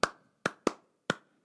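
Sharp, crisp hand claps in an uneven rhythm, the pattern of Steve Reich's piece Clapping Music, about five in all with a pair grouped closely and gaps between the others, sounding alone with no talking.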